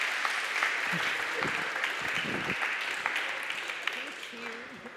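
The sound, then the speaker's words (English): An audience claps steadily for the full five seconds, a dense, even patter of many hands, with a few faint voices murmuring underneath and the applause thinning slightly toward the end. “Thank you very much. Round of applause.”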